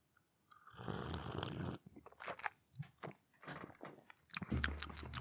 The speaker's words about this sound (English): And anyway, so this tea is by a company called Lloyd. It's ginger and citrus fruits. I've not looked at this. I've literally just made the tea. And I'm going to have a quick sip. Here we go.